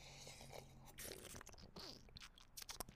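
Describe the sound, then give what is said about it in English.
Someone sips hot morning coffee, with a few short slurping, wet mouth noises and small swallows over about three seconds. No one speaks. “But per usual, I have my morning coffee. Let's go ahead and sip that real quick.”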